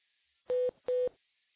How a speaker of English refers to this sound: You can actually hear the relays and the cheeps as the tones propagated through the system, or the DC act.